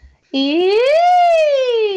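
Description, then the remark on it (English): A single voice sings a sustained vocal siren as a vocal exercise, gliding smoothly upward from a low pitch and then slowly drifting back down, strong, imitating a siren's wail. “But my favorite vocal exercise ever is a siren because it connects the different registers of the voice.”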